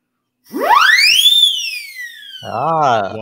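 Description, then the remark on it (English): An Acme Cyclone siren whistle, a professional instrument, sweeps rapidly upward to a shrill, piercing peak, then slowly glides back down in pitch; a voice briefly exclaims as the tone fades. “This is a Acme Cyclone.”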